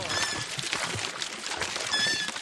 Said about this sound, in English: Their seesaw is actually a pump in disguise. As they rise and descend, water gushes from a vertical pipe into an open cement tank.